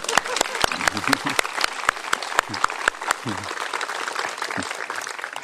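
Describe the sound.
An audience applauds steadily for about five seconds for a speaker's part of a talk, a dense patter of many hands with a few sharper, louder claps standing out, and faint murmuring voices underneath.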